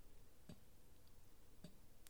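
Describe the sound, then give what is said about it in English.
A clock ticks quietly, two soft, evenly spaced ticks roughly a second apart, against a low, hushed background with no one talking. “It's a clock.”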